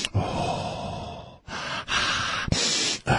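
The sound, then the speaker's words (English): A person takes several long, exaggerated sniffs in a row, loud, breathy inhalations separated by brief pauses, mimicking sniffing other people's food in restaurants. “I'm going to start going around sniffing other people's food in restaurants.”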